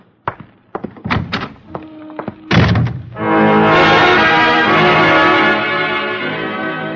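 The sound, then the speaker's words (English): A few sharp wooden knocks and thuds, then a heavy door slams shut, immediately followed by a loud, sustained swell of dramatic music. No one speaks. “I can find the door.”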